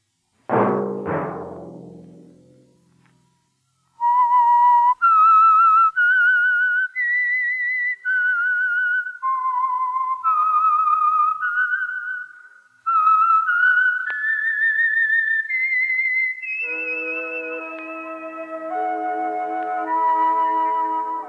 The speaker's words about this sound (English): Let that whistle be your signal for the Signal Oil program, The Whistler, each Sunday night at this same time.